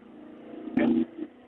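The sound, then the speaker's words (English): A heavy truck rumbles past outside, a low engine drone swelling briefly to a louder burst before easing off. “Sorry, it's a truck day outside here.”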